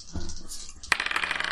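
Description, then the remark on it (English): Two dice are rolled together for a check in a tabletop roleplaying game and clatter onto a hard tabletop with a sharp first knock, then a quick run of small rattling clicks as they tumble and settle, fairly loud, with no voices. “So odds are pretty terrible for me to succeed with two dice.”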